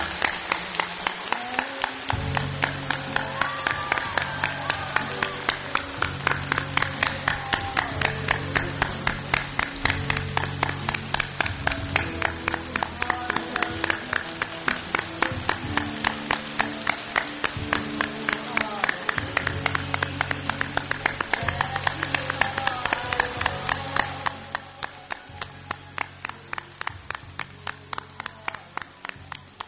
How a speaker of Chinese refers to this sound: 好，请大家给他鼓掌，欢迎师父的来临。 请大家鼓掌欢迎师父。